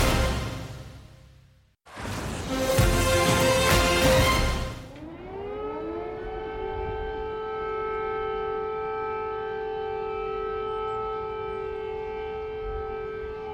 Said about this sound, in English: If you're wondering why people here in Kyiv are on permanent high alert every time those sirens go off, it's because just 30 days ago, the Russians launched a cruise missile from the Caspian Sea, from perhaps as far away as 1,000 miles.